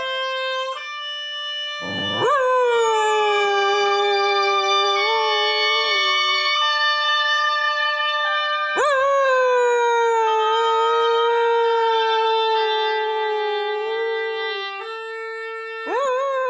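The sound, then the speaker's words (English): A dog howls in long, sliding wails over steady, reedy oboe tones, rising into each howl three times. The blend is loud, with no talking. “The reason I want you to hear a dog singing with oboes is to assure you that David Rothenberg's passion for music making with animals, well, it's just not a desert island thing.”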